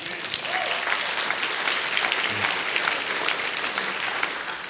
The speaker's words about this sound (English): When I look over and go like that, you start clapping, and then everybody else will start clapping.